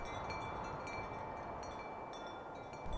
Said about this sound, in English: What is the most beautiful sound? Probably the wind, like, rushing through the trees. I guess, like, the wind is pretty nice. Wind blowing.